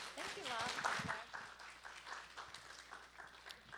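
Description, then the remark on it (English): An audience at an LA Opera event applauds as the microphone is handed to Dr. Vinay Lal, with a steady, dense patter of many hands clapping, loud at first and tapering slightly, with a voice briefly audible over the clapping early on. “So really, let me, without further ado, give the mic over with a round of applause to Dr.”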